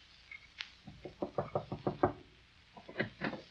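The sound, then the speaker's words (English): A rapid series of knocks on a wooden door, about a dozen sharp raps in two bursts with a short pause between, clear with no talking. “Opportunity never stops knocking in this house.”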